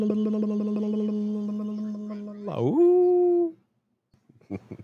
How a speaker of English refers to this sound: The dog back there was like, what the fuck are you doing?